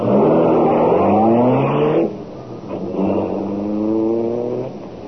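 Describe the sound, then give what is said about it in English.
The Black Beauty, the Green Hornet's car, revs hard and roars off, pitch climbing through two rising surges with a brief dip between gear shifts, loud throughout with no voices. “Step on it. Get the Black Beauty out of here.”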